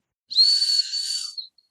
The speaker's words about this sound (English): Oh, I picked up the whistle. Yep. I picked up the Sally Bunbury. What is these? The Yurts 574s. And yes, they do have this whistle.